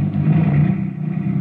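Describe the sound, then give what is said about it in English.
A car engine hums steadily, a low rumbling drone with a slight rev, as the vehicle pulls off and drives away. No voices are heard. “Then the car moved on.”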